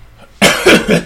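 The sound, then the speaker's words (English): A man's sudden, loud, harsh cough breaks out of near-silence and continues as a rough burst of about three rapid hacks that run together. “He coughed.”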